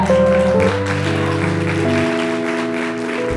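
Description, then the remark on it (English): Steady crowd applause for a couple introduced as friends, a dense wash of many hands clapping, runs for a few seconds over sustained organ chords that shift pitch underneath. “would y'all give them a hand as well, our friends?”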